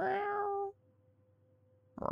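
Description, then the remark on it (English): A single drawn-out cat meow, clear, fading into quiet before a brief burst of another sound at the end. “that means that the cat is meowing because the cat wants to get snuggles.”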